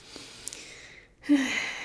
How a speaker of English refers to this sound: So basically, let's go ahead and just take a normal breath.